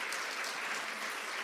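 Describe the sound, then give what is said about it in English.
Steady applause from a sizable crowd welcoming the 21 women of the PAW, a dense wash of many hands clapping at once, sustained evenly throughout without any voices standing out. “Can you hear the clapping?”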